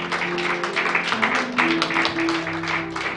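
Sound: audience hand clapping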